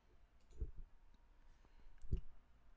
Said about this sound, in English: I was trying to type that word, but I couldn't.